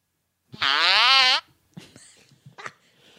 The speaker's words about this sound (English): Remember that fart I let in the hotel room in Phoenix? You had another one like that when we came back, and I was like, that's not cool.